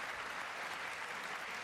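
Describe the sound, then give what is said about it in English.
Subdued audience clapping as Senate leader Mitch McConnell is introduced, a soft, steady patter of many hands with no standout claps and no voices, fairly quiet throughout its brief span. “And they barely clap.”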